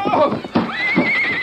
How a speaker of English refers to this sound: His horse stumbled and fell. Dan was thrown clear and was on his feet in a flash. So was the Mustang, but his left foreleg had been lamed.